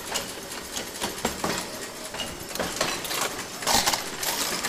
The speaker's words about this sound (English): Now, she's coming forward, she's injecting. When you hear that bang, it's injecting the metal.